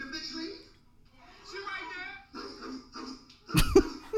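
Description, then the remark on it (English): A person gives a sharp, loud bark-like vocal burst at the end, imitating a dog, after several seconds of voices talking. “He barked at”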